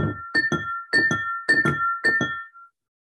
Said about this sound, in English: How about shaking quickly both hands above your head to high sounds, imitating two small bells like this?